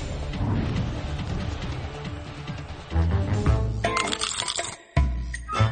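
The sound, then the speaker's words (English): Metallic clinking and jangling of zippers on a sweatshirt, a busy, continuous rattle that swells midway, drops out briefly near the end, then resumes. “Zippers, dude. There's zippers on my sweatshirt.”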